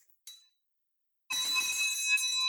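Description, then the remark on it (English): A small handbell, a victory bell rung to celebrate a big win on a deal, rings with bright, metallic tones: one short tap first, then after a pause a sustained, shimmering ringing that continues loudly with no voices. “First and foremost, before we get going any further, I have to ring what's known as the victory bell for what is a huge, huge win.”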